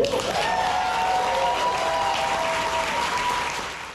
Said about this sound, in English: A crowd of spectators, including a number of Wisconsin youth, broke into thunderous applause after Governor Tony Evers vetoed the controversial bill.